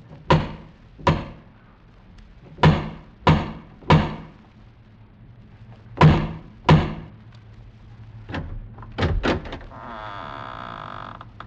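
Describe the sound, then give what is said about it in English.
Heavy, booming knocks on a massive wooden door, struck in spaced groups of two, three and two, then a few softer thuds and a long, drawn-out creak as the door swings open. “strode across the gravel and up to the massive wooden portal, the door of the House of Usher”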